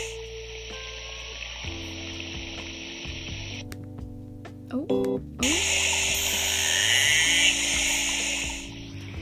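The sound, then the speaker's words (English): A narwhal's echolocation clicks speed up as it nears its food and merge into a dense, rasping feeding buzz over a steady hiss and low hum. A voice briefly says a single word. “But they're so close to the food that the clicks turn into a buzz, like what you just heard.”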